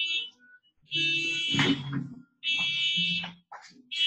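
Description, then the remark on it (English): A car alarm goes off outside, apparently as someone tries to steal a car. It blares in long, loud electronic bursts, a shrill, wavering high tone over a harsher buzzing undertone, cutting off briefly between blasts before starting again. “Dang, someone's trying to steal a car right now.”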